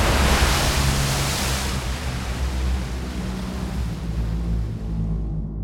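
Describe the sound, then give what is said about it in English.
A huge ocean wave crashes in a loud, broad roar that hits hardest at the start, then churns steadily and slowly washes away, with no voices. “the twins watched as the giant wave covered Sarcasta and she disappeared”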